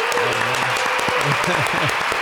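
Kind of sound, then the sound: crowd, applause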